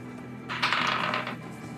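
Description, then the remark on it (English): Real dice tumble and clatter across a hard tabletop in one short rattling burst of under a second, over a faint steady background hum. “Oh, thank you, real dice. That's a 30.”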